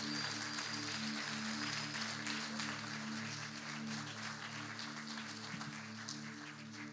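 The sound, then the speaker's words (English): An audience at a worship service claps steadily for the pastor, his wife and the worship team for the full seven seconds, a dense, loud wash of many hands, with low sustained musical tones humming underneath. “Now keep those hands clapping for your pastor and his wife, and the team here.”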